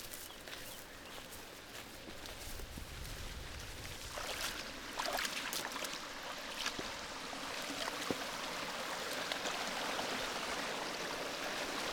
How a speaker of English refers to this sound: And you can hear that sound. You can see the waterfall about 60 feet away coming down the side of the hill.